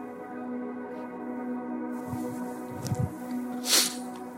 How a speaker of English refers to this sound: And I'm going to step over here for a second because I'm going to keep coughing.